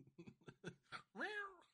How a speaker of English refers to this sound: What up, dude? That cat is so chill.